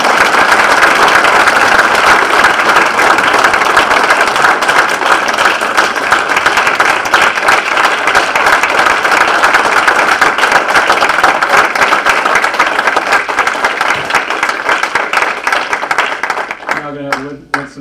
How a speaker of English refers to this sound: Let's give all five of the Patriots a big round of applause.